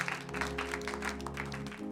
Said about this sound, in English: Clap again for Jesus Christ.